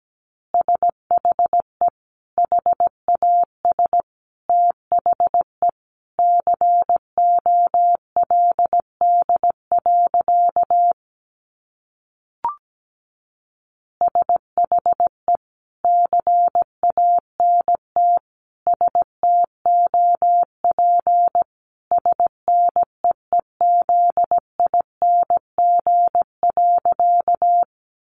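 Morse code sent at about 17 words per minute: a single steady, mid-pitched beep keyed on and off in short and long bursts, with a brief silent pause midway and no voices.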